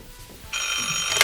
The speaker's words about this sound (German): Während sich die Glockners und die TKKG-Bande noch Gedanken darüber machten, was mit Susanne geschehen sein könnte, klingelte das Telefon erneut. Diesmal ging Kommissar Glockner an den Apparat.